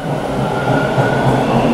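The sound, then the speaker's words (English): A steady, loud rumble of a subway train in motion, with a continuous low roar and a faint sustained whine above it. “He headed to the subway and boarded a train carrying in his hands the evidence police needed to catch Holly's killer.”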